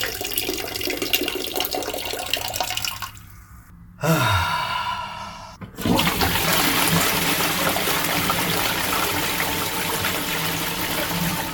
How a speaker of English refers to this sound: That sound effect is actually me urinating in a toilet and then flushing it.